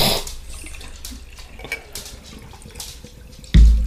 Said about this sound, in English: Alrighty. And so we did a bad pour. There's no foam.